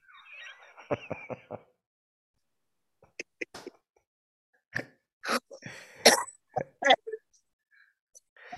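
A series of sharp, harsh coughs in quick bursts, some clustered together with short pauses between, loud and raspy with a couple of smaller throat sounds scattered among them.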